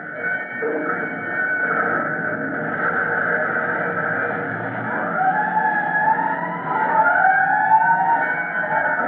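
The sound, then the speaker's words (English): A fire chief's car engine rumbles steadily as it drives four blocks to a fire at a three-story building, then its siren starts wailing, the rising and falling tones growing louder over the motor noise. No one speaks. “A matter of four blocks and less than that in minutes before the chief's car rolls up in front of a three-story building where smoke seems to be coming from an opening in the roof.”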